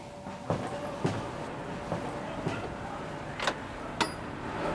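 A door being opened, with a handful of dull clunks and rattles spaced irregularly over a few seconds, heard against a steady low background rumble, no voices.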